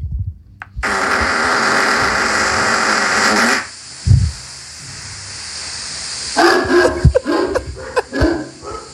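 dog barking

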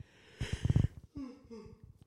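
yawn

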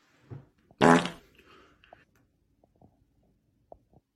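fart

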